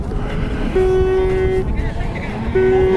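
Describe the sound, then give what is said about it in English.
World Rally Championship cars roar past at the line of a rally stage with a loud, continuous engine howl. A steady whining note holds, drops away briefly, then returns as another surge of revving follows. “Just thought we should get the sound of the cars loud, because it's been probably a bit quiet and distant so far.”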